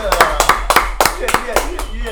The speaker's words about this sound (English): Let's clap it up, clap it up, clap it up, clap it up.